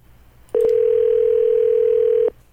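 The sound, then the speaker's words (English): A telephone line rings once as a call goes through: a single loud, steady electronic tone that holds for nearly two seconds before cutting off, with no one speaking. “All right, let's grab another email here, another phone call.”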